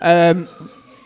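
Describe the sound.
A loud, steady blare from an emergency vehicle siren cuts in briefly, then drops to a fainter lingering tone as it carries on outside, with a murmur of voices underneath.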